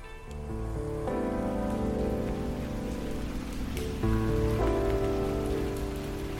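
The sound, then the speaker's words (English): Steady rain hisses continuously under sustained, droning musical tones that shift pitch a few times. It is fairly loud and even throughout, with no voices. “On a night that began in rain and ended in snow, I met a dame I'd never forget.”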